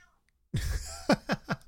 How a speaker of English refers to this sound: Hello, happy Sunday. We are recording surrounded by a very vocal cat.